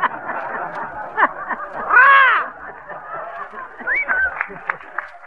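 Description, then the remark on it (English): A loud, brassy trombone blast swells and bends in pitch midway through, surrounded by shorter honking brass notes and a busy background. “Now, that's a trombone, sis.”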